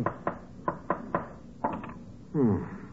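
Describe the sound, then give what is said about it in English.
Nails are hammered to tack a freshly painted canvas onto a wooden frame: sharp wooden hammer blows land in an uneven rhythm, about eight strikes with a quick cluster near the end, followed by a short squeaky, wavering tone. “But what were you doing with the hammer and nails?”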